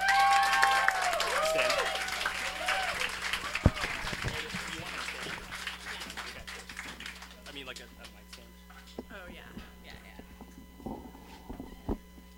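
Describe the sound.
An audience applauds steadily for a storyteller being introduced, the dense clapping strongest at first with a few voices and whoops, then thinning out and fading over the last several seconds.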